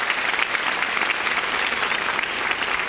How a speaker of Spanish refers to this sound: Y dale otro fuerte aplauso a Dios.